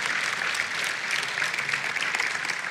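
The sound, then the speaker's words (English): A crowd claps steadily for a few seconds to thank the youth leaders, a dense, even wash of many hands with no one speaking over it and no clear rise or fade. “So yeah, give them a round of applause.”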